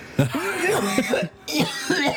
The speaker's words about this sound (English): Hang on, just bear with me. I'm going to have to do a really horrible cough. It's all the dairy milk I've been eating from Mondelez.